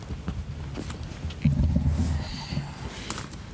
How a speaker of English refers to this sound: and there goes the dog, just my little doggy Lando Ray, just walk by the microphone.